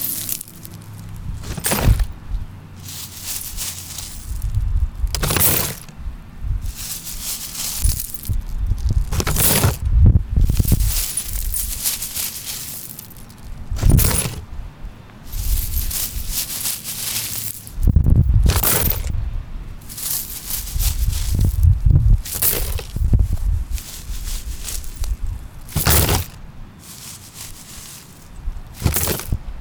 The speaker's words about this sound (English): That was a shattered glass tabletop being scooped into a paper bag. There's probably a metaphor in there somewhere.